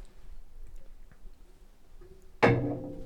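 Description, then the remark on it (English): An object slammed down hard onto a granite tabletop: one sudden, loud crack that rings briefly and fades, breaking a stretch of quiet, low background hum. “Stop slamming shit. It goes right through the mic.”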